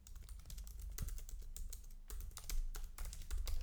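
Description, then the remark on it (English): Rapid, uneven keystrokes clatter on a computer keyboard, fairly loud, with bursts of clicks running continuously and no voices. “Sorry if you guys don't like me typing, but it's actually not my issue.”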